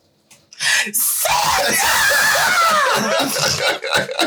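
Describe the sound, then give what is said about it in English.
A person lets out a loud, sustained scream lasting a few seconds, with breathy, laugh-like bursts at the start and end. “Sorry for screaming.”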